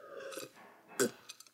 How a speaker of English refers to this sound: Sorry. I'm chewing ice.